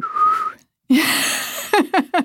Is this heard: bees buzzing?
no